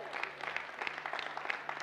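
A short burst of steady audience applause, many hands clapping in a dense, even patter at moderate loudness with no voices standing out.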